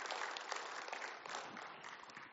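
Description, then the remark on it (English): Steady applause from a large crowd, a dense wash of many hands clapping at once, sustained and fairly loud throughout with no voices standing out. “So first of all, just you guys, a round of applause for all of you.”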